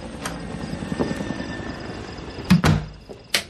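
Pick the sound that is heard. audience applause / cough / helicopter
helicopter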